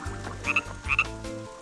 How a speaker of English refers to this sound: He meets a frog along the way.